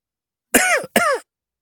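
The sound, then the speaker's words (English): Two quick coughs in a row, each a short rough burst with a slight throaty rasp, followed by silence. “I cough.”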